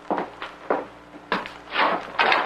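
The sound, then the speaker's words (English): A few quick footsteps approach, then a door is opened to answer a visitor, with a click and a rustling, scraping swing. No one speaks. “I'll answer the door.”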